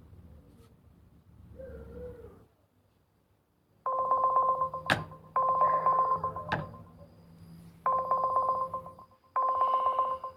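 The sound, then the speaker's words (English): A telephone ringback tone on an outgoing call repeats in steady bursts, about four rings heard clear through the handset after a quiet, muffled opening with no one speaking. “Yeah, so it's fucking ringing.”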